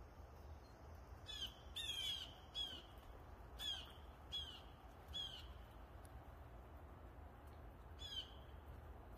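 Harsh, raspy calls of birds that are not ravens repeat in short bursts, some in quick doubled notes, over a steady low outdoor rumble. The calls are fairly loud, with brief gaps between them.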